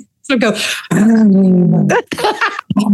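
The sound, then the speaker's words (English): A person imitates a man's amorous growling with their voice: a few rough, throaty bursts and one long, sustained rumbling note in the middle, fairly loud. “Well, I was gonna say, when he got amorous, he would sort of start growling.”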